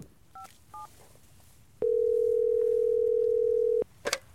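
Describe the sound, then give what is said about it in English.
Two short dialing beeps, as someone dials an expert, are followed by a steady, loud telephone tone that hums at one even pitch for about two seconds, then cuts off with a brief click. “Let me see if I have a signal, and maybe I can dial in an expert.”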